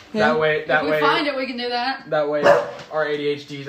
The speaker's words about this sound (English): What are you barking at, boo? He's barking at the wall, bro.